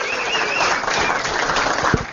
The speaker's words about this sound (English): Everybody, please, let's give him a big round of applause.